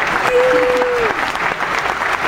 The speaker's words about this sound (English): Thank you, thank you, thank you for all the applause. Everyone, welcome to AfterBuzz TV.